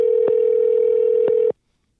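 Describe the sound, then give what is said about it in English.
A steady electronic telephone tone drones for about a second and a half during an outgoing phone call, with faint clicks along the way, then cuts off abruptly into silence. No voices are present. “Some guy Jeff is gonna answer the phone”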